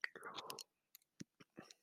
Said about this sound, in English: Sorry if I'm chewing loud. I'm eating M&Ms.